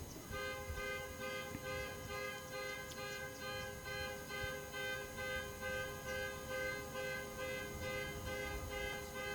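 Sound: car horn honking outside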